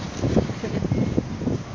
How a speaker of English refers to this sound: It's very windy today. It is indeed a bit windy. And it's just a tit-bit nipply. Probably also going into the... Oh, probably going straight into the mic at all times, yeah. Sorry about that.